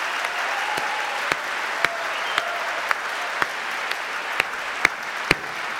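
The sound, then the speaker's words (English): Steady applause from an audience for the LA Opera's Domingo Colburn Stein Young Artists, a dense wash of many hands clapping with occasional sharper, louder claps standing out at irregular intervals, no voices. “And please, one more round of applause for them.”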